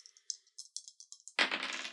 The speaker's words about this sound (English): Okay, but when I roll, I just roll. Flat zero. Two dice. Okay. Hoping for the best.